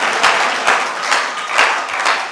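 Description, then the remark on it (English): A church audience claps together in sustained applause as a clap offering to the Lord, a dense wash of hand claps with a few sharper accents, fairly loud, with no voices rising above it. “Why don't you give the Lord a mighty clap offering?”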